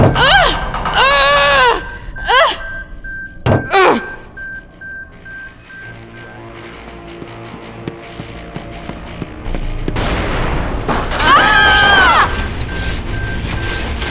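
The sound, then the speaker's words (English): A door, its hinges weakened by an earlier blow-up, is forced off its hinges: strained grunts of effort, two sharp heavy impacts, then a rumbling, grinding crash with more straining voice sounds over it. “Magnus's blow-up weakened the hinges on the door. Come on, door.”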